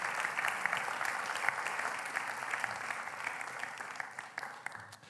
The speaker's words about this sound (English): Would you please give a round of applause to our two Jesuses?